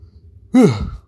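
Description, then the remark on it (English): A single breathy yawn from a tired person that starts abruptly partway in, rising then sagging in pitch as it trails off into an exhale, with quiet background noise before it and no speech. “God, I am tired. I'm still yawning.”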